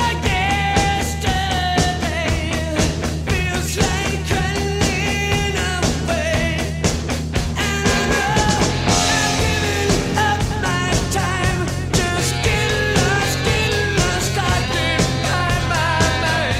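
Loud, dense rock song driven by a repeating crunchy guitar riff over steady drums and bass, with the chord pattern shifting about halfway through and the energy staying constant throughout.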